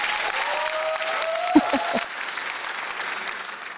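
Steady audience applause welcoming an introduced guest fills the whole stretch, a dense wash of clapping with a faint sustained tone running beneath it and a few sharper thumps near the middle before it thins slightly.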